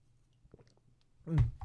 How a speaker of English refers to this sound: Sip of water.